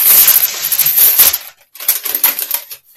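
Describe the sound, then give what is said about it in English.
Close, loud crinkling and ripping of parcel packaging torn open by hand, a long scratchy burst followed by a brief pause and a second shorter tearing rustle, with no voices. “You need a scissor to open the packaging.”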